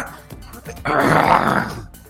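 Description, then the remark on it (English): A person imitates the growl of an Aslanti hit square in the chest by a laser blast: one rough, raspy vocal snarl lasting about a second, loud, after a few quieter breathy sounds. “He growls almost fairly, which is kind of ridiculous, but that's what they do.”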